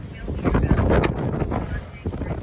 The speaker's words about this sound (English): Very loud winds are whipping through the town, right? There's moments where it dies down and then it comes back. Last week, if you watched videos of the California wildfires spreading, you could hear these gusts.